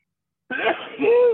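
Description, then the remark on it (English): A single loud sneeze bursts out after a moment of silence, a breathy rush followed by a voiced, falling 'choo' that trails off. “Oh man, I sneezed my face off.”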